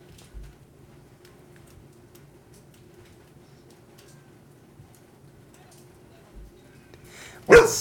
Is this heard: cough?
no